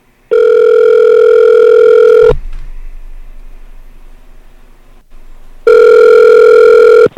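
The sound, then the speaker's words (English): A phone line rings twice as a call is placed to a Chili's restaurant at Edmonton Airport, Canada, each ring a long, steady electronic tone lasting about two seconds, separated by a quiet pause with faint line hiss. Loud, with no voices. “But here's that phone call.”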